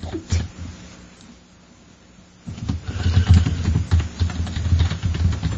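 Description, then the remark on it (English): A brief quiet gives way to a steady clatter of keyboard typing while someone checks in the Celebration Ale, rapid irregular key clicks continuing to the end over a low background hum, with no one talking. “It's weird, I hear you typing, but I don't see anything.”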